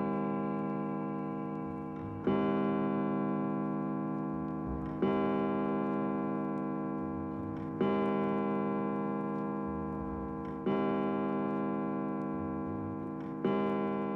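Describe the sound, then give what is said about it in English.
An old grandfather clock in a hallway chimes six times, each deep, resonant bong ringing out and slowly fading before the next strike arrives, spaced evenly about every two and a half seconds, with no voices present. “Brandy Matheson awoke just minutes before the old grandfather clock in the hallway bonged 6 times.”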